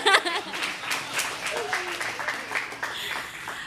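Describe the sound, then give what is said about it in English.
A crowd applauds a speaker's short talk, a dense, steady crackle of many hands clapping for several seconds, with faint voices and a few cheers mixed in. “You could clap for that.”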